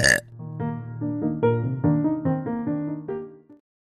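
A long, loud burp drawn out for several seconds, its pitch stepping up and down in a string of syllable-like pulses, as if burping out words.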